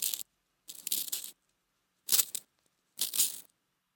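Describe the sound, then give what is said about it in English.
A pencil is ground in a hand-crank sharpener, four short bursts of rough, scratchy grinding separated by brief pauses, with no voices. “sharpening a pencil.”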